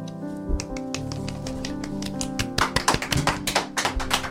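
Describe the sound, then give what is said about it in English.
A song's final sustained notes ring out, then light, polite clapping from a small studio audience breaks in partway through, a loose scatter of soft claps over the fading music. “Polite clapping in the studio.”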